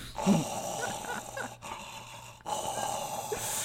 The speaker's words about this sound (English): He's breathing loud again.